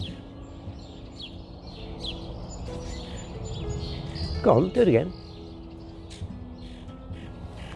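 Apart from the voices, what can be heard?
woodpecker calling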